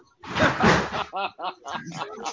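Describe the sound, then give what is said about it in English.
A balcony door is pulled shut with a broad, rumbling scrape lasting about a second, fairly loud, then voices and brief chuckling follow. “But hold on, let me close my balcony door so don't nobody can.”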